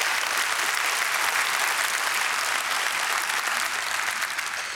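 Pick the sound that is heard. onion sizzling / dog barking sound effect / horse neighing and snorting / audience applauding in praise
audience applauding in praise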